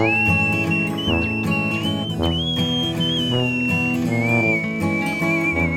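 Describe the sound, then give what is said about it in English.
A person whistles a steady, sustained melody, with long held notes that glide slightly in pitch, over a full, loud instrumental music backing. No one speaks. “you know how to whistle.”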